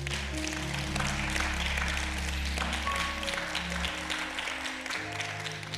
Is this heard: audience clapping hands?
yes